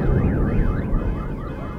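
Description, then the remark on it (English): A car alarm, set off by booms, wails in quick rising and falling sweeps, loud and continuous over a heavy low rumble, with no one speaking. “The booms are setting off car alarms.”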